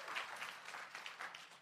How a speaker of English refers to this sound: Welcome, everybody, to the Improvisation and Television, Film, and Animation Panel. Please give a rousing round of applause to my friends, the great actors, Mark Gagliardi, Hal Lublin, and Craig Kakowski.